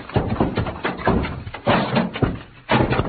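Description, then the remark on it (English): Heavy stacked wooden packing cases topple over after Pancho bumps against them and loses his balance, tumbling down in a loud, irregular series of heavy crashes and thuds, several impacts piling onto one another over a few seconds. “Be careful you do not bump against those packing cases, amigo. If they should topple over”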